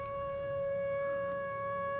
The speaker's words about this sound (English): This is from Arseny Aramov, and it's the …, which... Oh, this is wonderful.